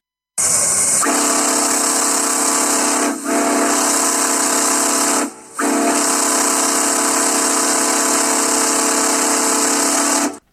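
A loud, sustained steam locomotive whistle, an actual recording of Casey Jones's distinctive whistle, with a rich, wavering chordal tone, vibration and breathy hiss, sounding for about ten seconds with two brief dips partway through. No one speaks.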